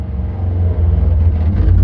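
A loud, low engine roar from a motorbike ridden by a single man passing by, a steady rumbling drone with slight rises in pitch as it revs, with no talking.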